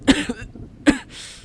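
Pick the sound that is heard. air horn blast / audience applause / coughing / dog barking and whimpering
coughing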